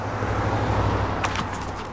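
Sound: car arriving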